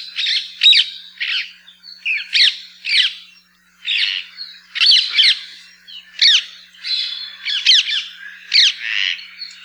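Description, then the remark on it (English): Loud, harsh squawks from a flock of birds, calling repeatedly in overlapping bursts with no pause, raucous throughout. “Perhaps you've heard the loud squawks of these birds when in flight or at their roost.”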